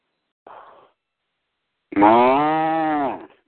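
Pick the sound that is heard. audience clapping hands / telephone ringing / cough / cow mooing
cow mooing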